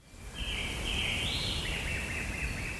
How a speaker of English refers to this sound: My eyes are dazzled by the sun's rays reflected in the clear blue mountain lake. The only thing you can hear are the birds twittering from the centuries-old trees. I have arrived at Mairlife, the medical health resort where I will fast for a week.